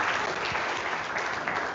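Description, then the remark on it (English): An audience applauds steadily for volunteers, a dense wash of many hands clapping at once, moderately loud and continuous throughout the short moment with no talking over it. “Round of applause for our volunteers.”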